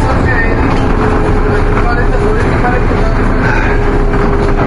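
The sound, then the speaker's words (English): Steady, loud rumble of a moving bus from inside, a constant low engine and road drone filling the space, with faint murmurs of voices in the background. “So now that we're actually on a bus, I don't have anything at all to talk about.”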